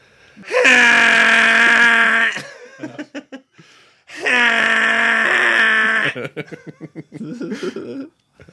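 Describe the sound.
A voice imitates a T-Rex foghorn roar: two loud, sustained, buzzy low bellows, each about two seconds long, each followed by choppy breathy bursts that sound like laughter.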